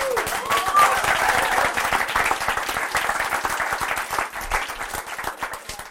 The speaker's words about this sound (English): So go ahead and clap,